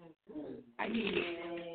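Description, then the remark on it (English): A deck of tarot cards is shuffled, a quick papery riffle that swells into a sustained rustling burst, with a voice murmuring underneath. “Again, the deck wasn't shuffled. There we go.”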